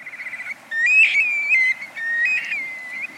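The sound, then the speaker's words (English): A young black-bellied plover, hatched in mid-July in the Arctic National Wildlife Refuge and about to make its first migratory flight in early September, calls: a quick run of short pulsed notes, then clear, plaintive slurred whistles that rise and fall, fairly loud, with no voices. “This young black-bellied plover is about to make its first migratory flight.”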